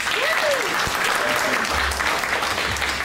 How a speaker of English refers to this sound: Can we please have a round of applause, please